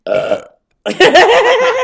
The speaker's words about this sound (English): Like, can you fart on command? No. I can't either, but I can burp on command.